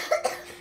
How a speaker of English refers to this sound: Cover your mouth when you cough.